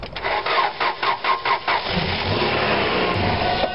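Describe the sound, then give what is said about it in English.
A car engine cranks over in a quick, even rhythm of about seven loud pulses, then gives way to a rough, steady churning rumble without fully catching. No one speaks. “Is it going to start? I don't know. Let's try it again.”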